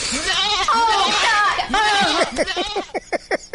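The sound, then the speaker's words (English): Loud goat bleating: several long, quavering cries with a shaky, nasal waver, trailing off into a quick series of short stuttering bursts. “Do you guys have goats in Pennsylvania?”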